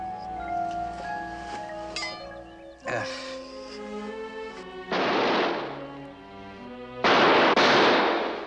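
Several loud gunshot bangs, like a car backfiring, break through a bed of tonal music, spaced a couple of seconds apart; the last two end in long, rough, hissing tails.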